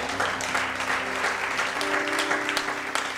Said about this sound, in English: Give the Lord a clap in the house.